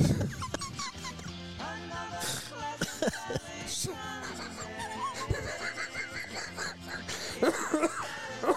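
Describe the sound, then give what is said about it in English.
A man breaks into a fit of harsh, repeated coughing mixed with laughter, the bursts coming in uneven clusters over a steady, busy background of music-like tones. “You gotta love when you get him into a coughing / laughing fit.”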